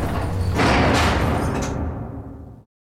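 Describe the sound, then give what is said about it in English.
A heavy door rumbles and scrapes as it swings shut, with a few louder bangs along the way, then the sound cuts off abruptly as it closes. No one speaks. “I can't hold this door! The door's closing!”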